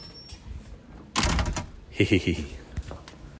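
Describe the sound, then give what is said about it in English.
A heavy double door is forced open with effort on the way to a gig: a loud rattling clunk, then a burst of scraping and knocking as it gives way, with faint voices in the background. “We have opened, with some effort, a door.”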